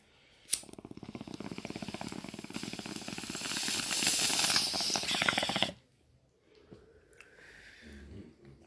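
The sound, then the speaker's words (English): A bong hit: a steady, fairly loud hissing inhale with faint bubbling texture that lasts about five seconds, then cuts off into quieter breathing and soft rustling. “Bomb hit.”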